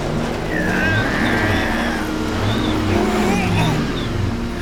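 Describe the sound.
A voice imitates a car engine, producing a steady, loud rumbling drone with rising and falling revving tones throughout.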